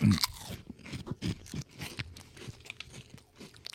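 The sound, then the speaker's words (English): Crunchy chewing of a Combos snack, with a loud initial bite followed by a steady series of sharp, brittle crunches over a few seconds, no talking. “ASMR chew.”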